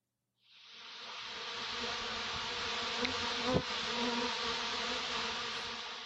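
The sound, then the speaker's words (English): A steady buzzing-bee sound effect that starts abruptly and drones continuously with a faint wavering hum, briefly swelling with a small click midway. “That sound means it's time for our community buzz, where we take a look at what the fans are talking about.”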